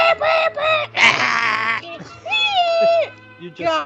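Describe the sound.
A voice imitates a dial-up modem shriek: a run of warbling, sliding high-pitched squeals and a burst of harsh noisy screech, with chirpy tonal swoops, loud throughout about four seconds.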